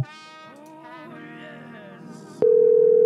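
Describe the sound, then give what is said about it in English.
A warbling, tonal phone-line sound of a call being forwarded gives way to a loud, steady telephone tone that starts abruptly near the end and holds unbroken and clear. “Your call has been forwarded.”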